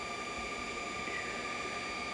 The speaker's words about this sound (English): In fact, he temporarily forgot everything when he saw an amazingly comfortable-looking train pull up and call out, "All aboard!"